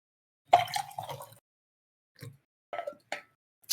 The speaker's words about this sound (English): I think I have some coffee left in here. Hold on a second. I need to do a little refill with my thermos.